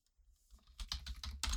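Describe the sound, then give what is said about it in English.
Rapid typing on a computer keyboard as someone adds items to a list, with a quiet start building into a dense run of clicky keystrokes and a few heavier key hits; no voices. “Expect a lot of last minute typing as things that are prompted remind me of things to put on the list.”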